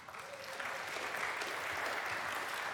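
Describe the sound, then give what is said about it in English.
An audience applauds the youth as they are invited up front, a steady, sustained, dense wash of many hands clapping that swells slightly at the start and then holds evenly loud throughout. “Let's give our youth a big round of applause.”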